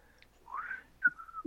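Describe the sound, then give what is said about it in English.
A person whistles a brief melodic phrase, a few gliding and held notes in quick succession, soft, with no talking over it. “just whistling Dixie”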